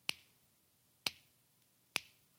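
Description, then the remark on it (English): Three crisp finger snaps marking seconds ticking away, spaced about a second apart in a steady rhythm, sharp with quick decay and near silence between them. “Clicking off.”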